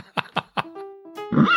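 Three quick breathy snorts, then a sustained tonal whinny from a horse that breaks into a high, quavering neigh at the end, fairly loud, with no talking over it.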